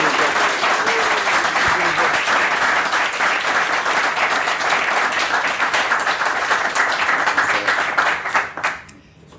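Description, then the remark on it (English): A crowd gives a sustained round of applause after Cults of Prax wins the vote into Frankenstein's RPG, dense steady clapping that holds at full loudness for about eight seconds before quickly fading out at the end. “I don't think we've ever had a round of applause before on the Frankenstein's RPG.”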